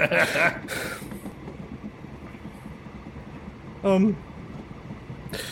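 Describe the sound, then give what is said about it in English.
A train rolls steadily along the rails, a continuous low rumble throughout, with a couple of brief noisy bursts at the start and a short rising squeal near the end. “And number two, just in general, not going to go through that car until the train comes to a stop.”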